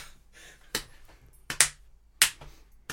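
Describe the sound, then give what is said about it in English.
A handful of sharp, distant hand claps, about five, from Mama Fratelli in a retold film story, land unevenly with short gaps between them. The crisp snaps stand alone over a faint background hiss, with no one talking. “And they hear a distant clapping.”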